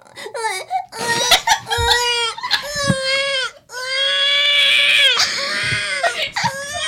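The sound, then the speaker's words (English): An adult voice imitates a baby crying: loud, high, wavering wails in several long bursts with brief catches of breath between them, sounding convincingly like an infant sobbing. “You can only do a baby cry.”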